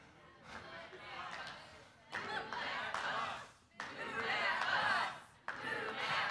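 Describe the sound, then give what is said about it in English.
A crowd chants "Move that bus" together in rhythmic bursts, several loud unison shouts separated by brief pauses, with a lively, cheering quality. “They'd get everything done, and then they'd have the crowd out there chanting, "Move that bus." Come on, can we do it?”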